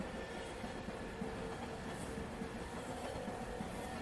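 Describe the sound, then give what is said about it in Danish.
A Danish S-train commuter train rolls steadily along the rails toward Rødovre station at 22:13, with a continuous rumbling drone and faint rhythmic clickety-clack, heard from inside at a constant moderate level with no voices. “Da S-toget ankom til Rødovre station nogle minutter senere, kl. 22.13,”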